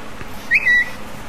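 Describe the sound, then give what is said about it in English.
An iPhone's text message alert plays a quick high-pitched chirp: a short blip, then a slightly longer whistling note, ringing out alone over faint background hiss. “The best one that I've got, though, is my text tone.”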